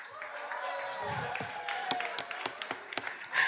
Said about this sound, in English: If you believe that the affirmative convinced you without a shadow of a doubt in your mind that nature does know best, I want you to start cheering for the affirmative.